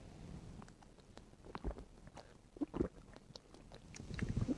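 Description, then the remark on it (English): A small sip of water is taken, with soft wet mouth clicks and a faint swallow. The sounds are quiet and irregular, and no one speaks. “Let me give me a small drink of water here.”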